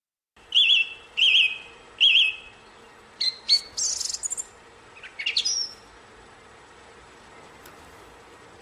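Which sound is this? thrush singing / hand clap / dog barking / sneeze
thrush singing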